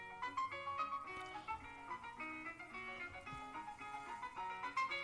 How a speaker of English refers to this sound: Okay, I'm going to play you two things. I'm going to play you both. Okay, earbuds, everybody. This is what my cell phone ring sounds like.